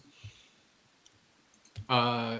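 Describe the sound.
Several dull, low knocks on a door, spaced unevenly and fairly quiet, followed right away by a person starting to speak loudly and close by.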